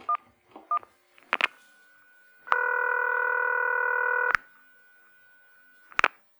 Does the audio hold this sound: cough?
no